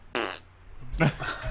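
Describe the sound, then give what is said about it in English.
A short, buzzy fart rips out, followed by a second rougher, noisier burst a moment later. “I farted.”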